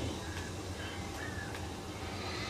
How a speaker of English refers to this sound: Oh my. There are so many birds.